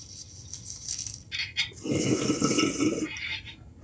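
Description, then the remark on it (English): A few light clicks and a quick hiss, then a big bong hit of hash: about a second of steady, gurgling water bubbling, fairly loud, with no voices. “So let me do a quick bong rip with this because I've got hash on top plus the think fast.”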